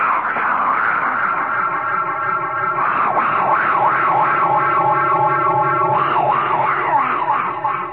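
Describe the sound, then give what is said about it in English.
A weird, continuous vocal 'fungus noise' made by a person through an echo chamber, its pitch wavering and swooping in rapid waves, loud for the whole stretch with no words spoken. “And would you give me a little echo chamber? I want to make my fungus noise.”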